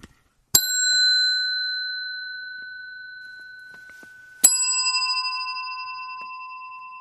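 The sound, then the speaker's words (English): A big Roadtrek bell is struck twice, about four seconds apart, each strike ringing out clearly with a bright, sustained tone that slowly fades. No one speaks. “Hey, that's the big bell. That's the road trek bell.”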